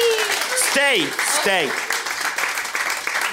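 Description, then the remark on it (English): An audience applauds with dense, steady clapping throughout, and a couple of swooping vocal whoops or cheers rise and fall over it in the first half. “So, yeah, big round of applause there”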